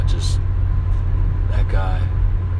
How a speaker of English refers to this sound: Man, so I'm just driving now. I've probably got about 8 hours in the car so far today.